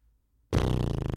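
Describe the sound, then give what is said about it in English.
A sudden, loud, buzzing fart-like raspberry made with the lips, starting abruptly after a brief silence and fluttering rapidly for about half a second. “A lot of farting noises there. I don't know what that was. That was just a lip thing.”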